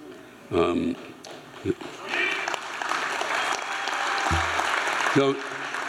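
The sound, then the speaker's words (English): An audience in California breaks into applause that swells into dense, steady clapping and holds for several seconds, with a few brief shouts or voices bursting out over it. “Don't take the applause in this room as a signal that there aren't a lot.”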